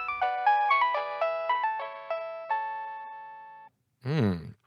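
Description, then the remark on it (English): A bright electronic phone ringtone plays a quick melody of about a dozen notes that step downward and repeat, ending on a held tone, followed by a brief burst of a voice. “What kind of musical work is this tone doing that might make it an effective ringer”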